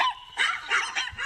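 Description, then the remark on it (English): A Chihuahua yaps several times in quick succession, high-pitched and sharp, in a studio, with no one talking over it. “That's a Chihuahua's bar.”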